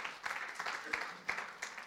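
An audience claps together in a steady, dense patter of many hands, with a few sharper claps standing out above the wash of applause at a moderate level.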